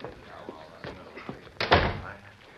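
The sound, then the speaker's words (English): A few soft thuds lead up to one loud office door slamming shut, its sharp bang trailing off into a short rattle. “Open your office door. Now go on in.”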